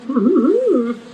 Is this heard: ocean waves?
no